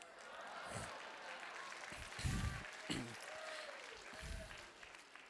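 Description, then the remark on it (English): An audience claps and laughs at an amusing story, a warm burst of scattered applause mixed with murmuring and chuckles. “You know, it's an amusing story. You clap, you laugh.”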